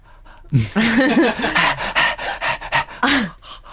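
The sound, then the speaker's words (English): A person imitates a dog's panting with a quick run of rhythmic, breathy huffs mixed with voiced whiny tones, for a few seconds without any words. “No, I like when dogs have the secondary panting as well as the... So they'll go... and then the tongue goes slightly back and they go...”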